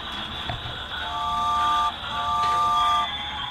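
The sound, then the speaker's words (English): Two sustained train horn blasts, each just under a second and separated by a brief gap, sounding a steady mid-pitched chord over a constant rumbling background. “it's the train!”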